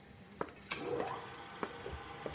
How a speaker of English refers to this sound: We've now come down to one of the engineering workshops where Dr. Yossi Sayer is busy drilling holes into a CD.